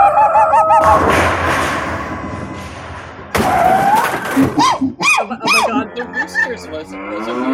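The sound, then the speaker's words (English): Roosters crow loudly several times in overlapping bursts, following a stretch of noisy clattering and thudding. No one speaks. “Oh my god, the roosters was a weird time.”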